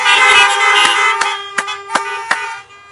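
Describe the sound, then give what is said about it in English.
A loud chorus of many car horns honking at once as people in their cars honk on a count of three to say amen during a church service, overlapping in a sustained blare with several sharper toots punctuating it before the sound cuts off. “So on the count of three, if you want to agree with that, would you honk your horn? 1, 2, 3.”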